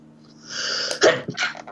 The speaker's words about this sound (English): Bless you.